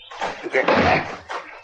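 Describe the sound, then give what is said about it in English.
The door of a house or lodge is kicked in: a loud crash with a heavy thud, then rattling and banging as it swings open, followed by a second sharp knock near the end. “I'm going to kick in the door.”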